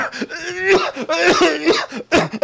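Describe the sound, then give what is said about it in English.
A voice imitates a man's harsh, prolonged coughing fit after taking a toke from a smoking bowl, with several rough, raspy hacks and throat-clearing bursts running together in quick succession, loud. “Finally, after he's coughing for like a minute and a half, 2 minutes, he looks over at me.”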